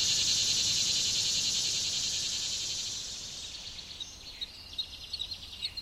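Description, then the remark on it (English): A dense night chorus of spring peepers, tree frogs, katydids and male crickets giving mating calls trills steadily at high pitch, then thins out partway through, leaving scattered chirps and calls against a quiet outdoor background. “a choir of whistling spring peepers, quacking tree frogs, and katydids take over and sing till the wee hours of the morning”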